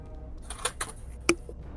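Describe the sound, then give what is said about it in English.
Something small clatters onto a computer keyboard, making a few sharp plastic clicks followed by one louder clack against a quiet background. “If I could not drop stuff on my keyboard, that would be fantastic.”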